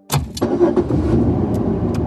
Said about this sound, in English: So if I got into the car, I'd turn the radio off and I just wanted to drive the car with the car noise and hearing the car engine run.